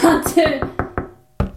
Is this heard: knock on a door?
yes